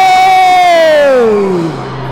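audience shouting and cheering

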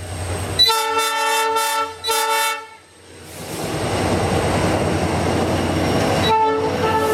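train running on rails

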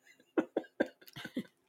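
coughing

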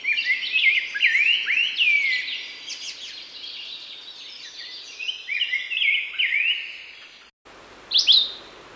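red-eyed vireo song

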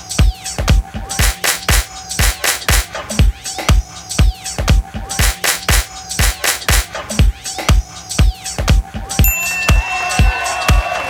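hand clapping rhythm

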